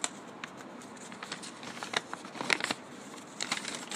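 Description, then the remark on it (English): Dry paper crackles and crinkles in quick, irregular bursts as an envelope is opened, with sharper snaps around the middle and toward the end, fairly faint overall with no voices. “Notice that crackle.”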